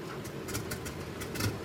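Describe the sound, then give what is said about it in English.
Galen starts the engines of Thomas's plane, its canopy left open: a steady, throaty mechanical rumble with a low drone, flecked with short bursts of hissy noise, swelling slightly toward the end. No one speaks. “Leaving the canopy open, Dixie and Cornelius clung to the side of the plane as tightly as they could, as Galen fired the engines.”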